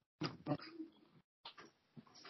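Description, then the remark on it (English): A dog makes two quick barks or yips, followed by softer whining and snuffling noises, then a few more scattered dog sounds after a brief gap. “do you have a dog? I have a dog and two cats, yep.”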